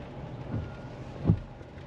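Steady hiss of heavy rain over a low rumble of a rental car driving on a bumpy road in Canada, broken by two dull thumps, the second one louder. No one speaks.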